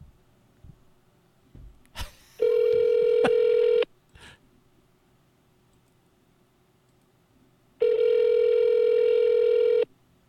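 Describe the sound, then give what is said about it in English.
A few soft clicks as a call is placed, then two long, steady electronic ringback tones separated by a pause, heard clearly through a phone line with no one speaking. “Call number 4.”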